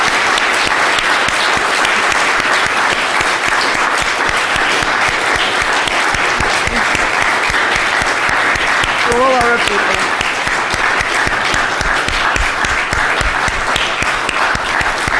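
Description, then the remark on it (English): An audience at an LSE event applauds steadily for about fifteen seconds, a dense, even wash of clapping hands at constant loudness, with a brief voice or cheer rising faintly through it midway; the applause recognizes the courage and valor of the people of Ukraine. “also providing a round of applause to recognize the extraordinary courage and valor of people in the Ukraine today.”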